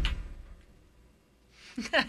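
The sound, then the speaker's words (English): A single dull, heavy thud lands right at the start as someone slams their head down, followed by quiet and then a short burst of voice near the end. “That was me slamming my head on the”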